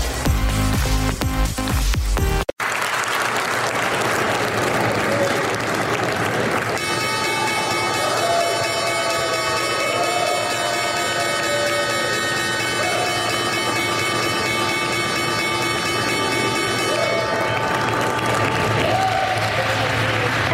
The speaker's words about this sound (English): And yes, that was the opening bell on a jobs report Friday.